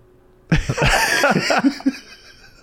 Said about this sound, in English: Are you just breathing into the mic? It was just like slowly like leaning in, trying to think of something to say, but I couldn't.